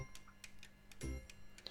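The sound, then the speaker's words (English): A clock ticks steadily, about four or five crisp, regular ticks over a faint low hum, with a brief dull thump partway through. “Stupid clock.”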